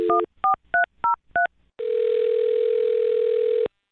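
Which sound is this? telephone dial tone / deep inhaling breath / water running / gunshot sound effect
telephone dial tone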